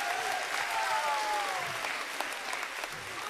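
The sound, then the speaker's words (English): A crowd applauds Gen Z, Gen Alpha and the young people steadily, a dense wash of clapping that holds at an even level throughout, with faint cheers and whoops rising and falling within it. “Let's give Gen Z, Gen Alpha, the young people a round of applause.”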